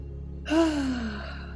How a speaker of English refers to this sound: Deep breath in.